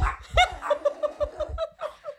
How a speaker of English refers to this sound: Lupe decided to bark at Millie, and now Millie's like, "Fuck that! This is my home."